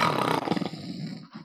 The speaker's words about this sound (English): This is an in-character yawn and out of character. You're such a good actor. Christ. You're such a good actor. You made me yawn.